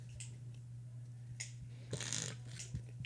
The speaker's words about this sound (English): Bro, I don't think I've ever heard somebody sip hot chocolate louder than you. Well, to be honest, I'm doing it on purpose.